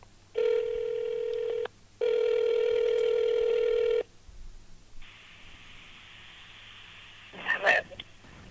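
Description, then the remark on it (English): A phone line rings back twice during an outgoing call, two long steady electronic tones with a short gap between them, followed by faint line hiss and a brief clatter. “Take one more sip of this beer while this phone rings really quick.”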